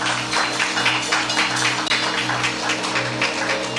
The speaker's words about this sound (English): Before I get into my sermon, can we give a hand clap of praise for the men of God in the house of the Lord this morning?